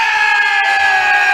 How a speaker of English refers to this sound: Yay! Good screaming, everybody.